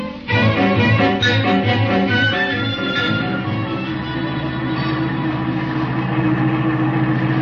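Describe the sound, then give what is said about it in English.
A car engine rumbles loudly as the car pulls in behind another car, throbbing unevenly at first before settling into a steady, low idle hum with no voices. “Yeah, this must be the place. I'll pull in behind their car.”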